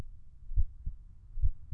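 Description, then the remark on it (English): A low, muffled heartbeat thumps in two lub-dub pairs, deep and steady with a soft rumble between beats, heard alone without any voices. “The red stone pendant in my pocket warms and pulses suddenly. Thump, thump. Thump, thump. Like a heartbeat.”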